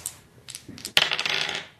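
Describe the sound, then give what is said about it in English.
Two dice clatter onto a hard surface, a few light ticks followed by a bright, rattling tumble that rolls and skitters for about a second before settling. “Okay, so two dice against a five.”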